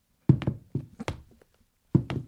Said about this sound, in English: I'm going to Foley it here. The table, yeah. Okay. Let's lock it down. Footsteps, take one.